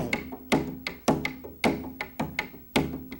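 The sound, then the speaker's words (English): Timpani pound out a steady run of twelve notes per six-beat bar, with a heavy, booming, violent accent on the first note of each group of three eighth notes, making four accented subgroups among lighter strokes, each stroke ringing low before the next strike. “And these 12 notes are demarcated into 4 subgroups by a specially violent accent on the first note of each group, like this.”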